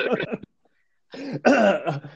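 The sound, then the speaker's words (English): A voice imitates an exaggerated cough and throat clearing: a rough burst, a short pause, then a louder, drawn-out hacking and gravelly clearing, fairly loud. “I like to walk around and cough as I'm looking at things.”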